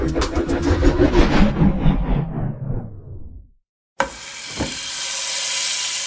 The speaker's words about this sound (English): Ah, the sound of steak sizzling on the induction grill. You can probably imagine the taste and smell just from hearing it.